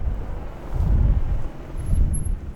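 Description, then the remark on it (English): A police car passes on quiet streets at about 10:15 at night: a low, rumbling engine and road noise that swells twice and fades, with no siren and no voices. “That was a police car that surprised us.”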